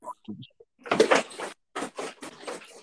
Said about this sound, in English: Oh boy, I got a run in over here. My cat just went ape shit and knocked over a garbage can. We got a run in by Lucy the cat.